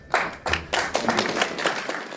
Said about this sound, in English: Instead of snapping out of the trance and coming to the realization, the audience ignored the truth and chose to mock Jim Grinstead with a slow clap.